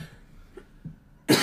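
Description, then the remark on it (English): A single loud cough bursts out in a studio near the end after a second of quiet background noise, with a couple of faint throat sounds before it and no talking. “No coughing in the studio, please.”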